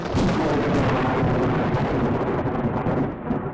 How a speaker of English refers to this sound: And it happened that quickly where this tree that I was sitting underneath or standing underneath was struck by lightning.